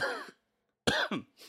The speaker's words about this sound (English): The cough wasn't part of her quote